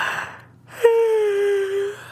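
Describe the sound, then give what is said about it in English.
A single drawn-out yawn from a tired person late at night: a soft breathy intake, a brief pause, then a long voiced, slightly sighing tone that slowly sinks in pitch and trails off. No speech. “You're yawning.”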